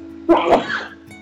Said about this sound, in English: Bless you. Sorry.